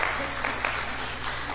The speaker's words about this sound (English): Good job on getting up and coming to church. Amen? It's okay to clap.